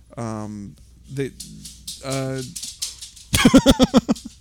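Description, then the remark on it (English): A dog lets out a rapid, loud burst of about seven sharp barks near the end, after a couple of longer, drawn-out voiced sounds. “Suddenly dog.”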